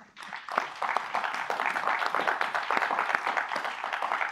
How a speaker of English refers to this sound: You should give her a round of applause, please.